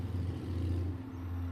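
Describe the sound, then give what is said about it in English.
A car rolls by, its engine a steady low rumble with a humming drone that holds for the whole short moment. No one speaks. “A voice from a passing car interrupts the moment.”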